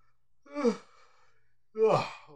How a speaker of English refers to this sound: Hold on. I'm gonna yawn.